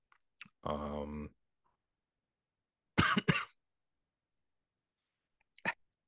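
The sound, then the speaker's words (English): A short voiced throat sound, then two separate coughs spaced a couple of seconds apart with silence between them, the first rough and fuller, the last brief and sharp, fairly quiet. “And they're both about to cough.”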